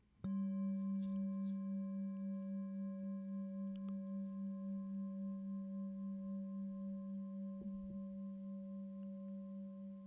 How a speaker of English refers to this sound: And the passage of sound through time. And the passage of the sound of the bell through time.